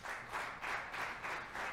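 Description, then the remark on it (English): A crowd claps steadily for fathers, dense overlapping hand claps forming a continuous wash of applause that swells in soft regular pulses, with no voices over it. “Let's clap for our fathers again.”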